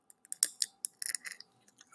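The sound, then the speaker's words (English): Crunching and sharp cracking clicks come in quick irregular bursts as a person bites open and chews seed shells, eating the shells instead of spitting them out, with no talking. “That's probably because you're not supposed to eat the shells, weirdo. You're supposed to crack it and spit the shells out.”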